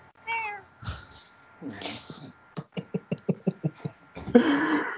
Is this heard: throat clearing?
no